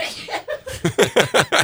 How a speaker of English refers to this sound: Never heard a laugh mid-sneeze. Nah, we're good to go. Is that a snaff? A half sneeze, half laugh? It's a snafu.